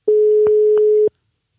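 A single steady telephone ringback tone, the burr of an outgoing call, sounds for about one second, clear, with faint clicks at its start and end and no one talking.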